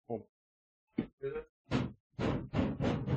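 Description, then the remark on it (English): A four-drawer metal file cabinet next to an office door is banged by hand about seven times, starting with a few lighter thumps and building to louder, quicker resonant bangs near the end. “And I hit this file cabinet that's right next to my door. I actually can almost bang on it.”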